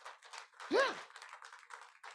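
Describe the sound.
An audience claps for the Lord Jesus in a dense, steady patter for a couple of seconds, while a single voice rises in a brief cheer or shout partway through.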